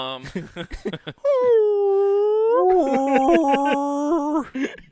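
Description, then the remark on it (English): A brief burst of speech gives way to a person imitating blue whale calls: long, loud, drawn-out moaning tones that bend slowly in pitch, followed by a wavering, warbling stretch. “And they're just on top of me making blue whale noises.”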